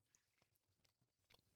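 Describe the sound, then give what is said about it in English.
Wet chewing of a sandwich, with irregular crunchy bites and smacking mouth sounds repeating over a second and a half, no talking. “Stop chewing your sandwich.”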